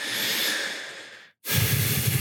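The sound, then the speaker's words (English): A long, breathy exhale gives way to a brief silence, then another breath carrying a low, gurgling rattle of throat bubbling, picked up by a microphone, moderately loud with no talking. “And you can hear my throat bubbling. That's amazing on this mic.”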